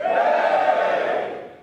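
An audience at a live event cheers to vote for the event to go ahead, in one loud, sustained burst of many voices that holds steady for over a second, then trails off.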